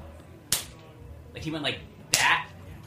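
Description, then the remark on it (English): Two sharp, loud smacks of a fist punching into an open palm, about a second and a half apart, with a brief murmur of voice between them. “He was punching his hand.”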